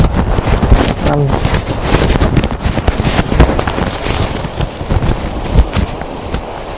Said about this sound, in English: I'm very jumpy. Every time a breeze or a gust comes, I have to hold on to the tripod.